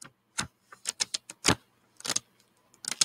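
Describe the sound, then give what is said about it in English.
Someone fiddles with a book: about a dozen short, crisp rustles, taps and flaps in an uneven rhythm, with brief pauses between bursts and no talking. “Does it sound like I'm fiddling with a book, or does it sound like I'm just farting a bunch of times?”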